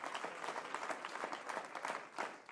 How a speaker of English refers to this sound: You're already ahead of me. You ought to clap your hands if you're excited about that.